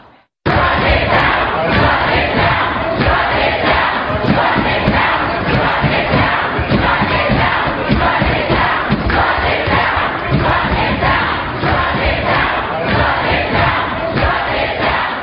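A large crowd of protesters at Middlebury College in Vermont shouts and chants loudly and without a break to stop sociologist Charles Murray from speaking, many voices merging into a dense, rhythmic roar that holds steady for the whole stretch.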